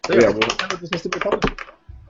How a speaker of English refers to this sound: What was that? It's like, are you rolling dice? No, it was my pen, sorry.